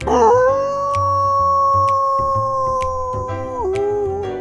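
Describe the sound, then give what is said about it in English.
A person imitates a dog's howl with one long, steady, wavering note held for several seconds, dipping at the end, over a quiet rhythmic beat in the background. “… would set the record for acting like a dog for the longest”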